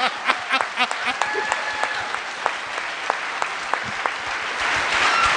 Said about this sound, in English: Let's give Kyle a round of applause here, Kyle.